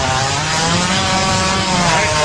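A hippo farting: a loud, raspy, buzzing blast that holds steady for about two seconds with a rough, sputtering texture and no voices over it.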